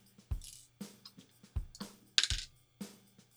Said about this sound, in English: this die needs to be retired. I have rolled... Put it in jail already. This dice, you are going back in the bag.